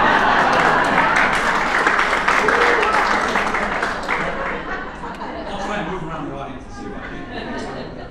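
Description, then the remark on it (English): An audience at an evening storytelling talk breaks into sustained applause, a dense wash of many hands clapping together with crowd voices mixed in. It stays loud for several seconds, then eases slightly toward the end. “So by a round of applause, who would like me to play the role of the moon today and stand in front of you?”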